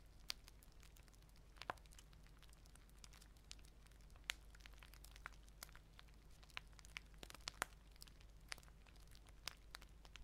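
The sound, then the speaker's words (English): An open fire in a fireplace crackles and pops steadily, with sharp irregular snaps scattered over a soft, constant low rumble. The sounds are fairly quiet and no one speaks. “Every crackle and pop from the open fire tames the last energy out of my muscles.”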